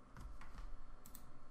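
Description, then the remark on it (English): Several quick keyboard keystrokes tap out in an irregular rhythm as someone types in a Discord chat box, fairly quiet, with a couple of sharper clicks near the end and no voices. “When I go to type the thing, like the box typing is read.”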